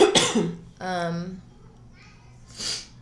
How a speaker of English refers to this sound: Sorry for all the sniffling, guys. I'm low-key sick or allergies. I don't know what's happening.